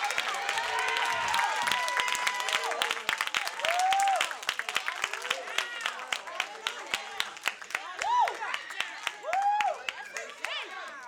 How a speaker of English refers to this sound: Now. That's somebody to clap your hands, mad or not, and give him some praise.